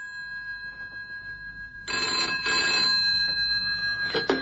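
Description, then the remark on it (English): A phone box telephone, called from an office, bursts into loud, rattling bell rings after a couple of seconds of quiet hum, ringing insistently until the end, with no one speaking. “That's why I'm ringing your phone box.”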